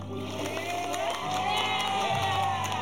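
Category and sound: crowd, people cheering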